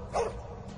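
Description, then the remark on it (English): A single loud bark from a large Rottweiler, short and harsh, followed by a low rumbling background with no further barks. “And it started with the Rottweilers.”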